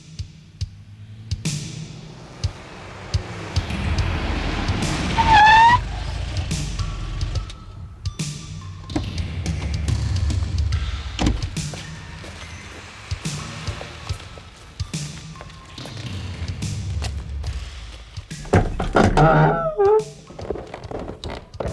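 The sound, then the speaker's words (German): A car rumbles in on Mondscheingasse, its low engine drone building and then settling, punctuated by squeaks and several solid thunks like doors shutting, with no voices. “Sie verhielten sich ganz anders als erwartet und kehrten mit dem Wagen in die Mondscheingasse zurück, um sich hier in einem alten Haus auf einem Hinterhof zu verstecken.”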